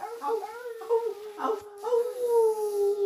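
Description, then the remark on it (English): A person imitates a dog barking, making a run of drawn-out, wavering whines and howl-like yelps for about three seconds, fairly loud with no other talking. “Okay, the point is, I was barking like a dog, right?”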